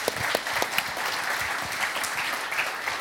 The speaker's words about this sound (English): You guys mind giving them a round of applause?